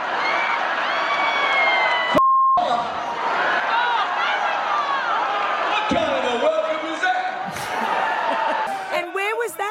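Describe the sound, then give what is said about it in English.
A large crowd shouts, jeers and swears loudly and continuously at a singer, many overlapping voices, broken once by a brief dropout with a short tone before the rowdy yelling resumes. “I paused it at the point where the crowd reaction. Now, they've obviously sworn at him.”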